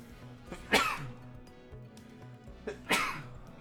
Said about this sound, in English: I'm going to sneeze.